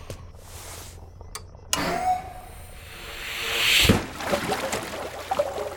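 A machine kicks on with a whirring hum that builds into a rising, airy hiss as a tank in a spore dispersal system mixes spores with water, aerating and pressurizing it, then settles into a steady churning rumble.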